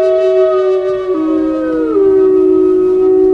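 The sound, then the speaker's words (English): A lone wolf named Takea howls in one long, sustained, mournful note that slides down in pitch partway through, loud with no other sounds around it. “The tale of Takea, the lone wolf.”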